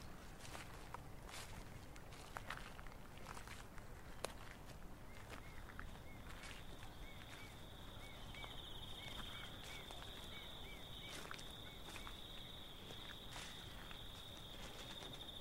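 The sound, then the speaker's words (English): Several people's footsteps shuffle and crunch as a group walks outdoors at night, in an irregular rhythm, fairly quiet, while a thin, steady high-pitched whine and faint chirps rise in the background partway through. “We're all a bit unsure how to behave, whether we can talk, how slow or how fast we should be walking, and what we'll do if we don't find any nightingales.”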